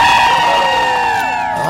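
A large, packed crowd outside cheers and whoops loudly on a holiday weekend, many voices blending into a sustained, high-pitched roar with overlapping shouts that hold steady throughout the short burst.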